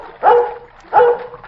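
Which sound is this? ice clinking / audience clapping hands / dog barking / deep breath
dog barking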